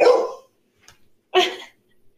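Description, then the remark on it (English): Two sharp dog barks ring out, separated by a brief pause, with a faint yip in between; no one is talking during them. “Oh, sorry, my dogs are terrible.”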